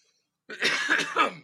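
After a brief silence, a person coughs in a short, harsh run of about three bursts. No one speaks.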